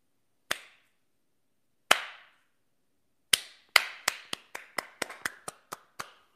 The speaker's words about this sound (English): Slow clap, anybody? Will you join me in a slow clap for the CEO of Goya Foods, whose name I didn't write down, but he's awesome?